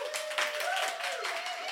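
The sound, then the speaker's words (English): An audience claps steadily throughout, a dense, even patter of many hands at constant loudness, with a thin sustained tone running underneath. “Thank you for clapping.”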